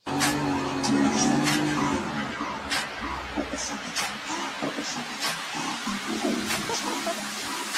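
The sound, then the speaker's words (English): A Mercedes-Benz jumping car fitted with hydraulics revs and strains while its tires spin in sand and mud, with a series of sharp thuds and clunks as the vehicle bounces and jumps. Fairly loud, with faint voices in the background. “Mercedes-Benz created a special jumping car to get you out of Santa Mud.”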